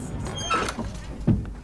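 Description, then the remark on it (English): A heavy castle gate at Château Gaillard grinds and scrapes open as soldiers open it from a courtyard, its creaking sweep followed moments later by a single solid thud as it comes to rest, with no voices present. “They set fire to the chapel's door, then, in the confusion, run out into a courtyard and open a gate.”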